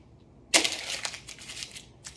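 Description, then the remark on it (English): A sharp rip of a piece of paper being torn off, followed by about a second and a half of crackly crinkling and crumpling, fairly loud, with no voices. “Rip it off, buddy. I need a piece of paper to write something down.”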